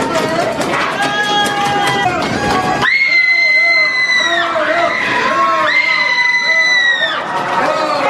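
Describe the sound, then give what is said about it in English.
A crowd screams nonstop, loud, with overlapping high-pitched voices that rise and hold in long wails over a dense roar of shouting. “And there's one section in here and it goes on and on this way. And they're just constantly screaming.”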